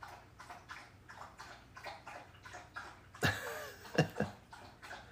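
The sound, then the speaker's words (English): A pet laps up water in a quick, steady rhythm of soft wet slurps, then a few louder splashy laps and clinks near the end, with no talking. “is doing a water drinking solo.”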